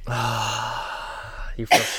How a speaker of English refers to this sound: You have all day to prepare for this cough. And it happens every single time. I'm fine until I come down here.